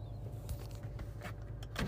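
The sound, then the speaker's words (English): A car's convertible top motor runs with a steady, low electric hum, broken by a few short mechanical clunks and clicks as the roof moves. There is no talking. “I forgot to flip the top down. It's kind of like crashed into the garage.”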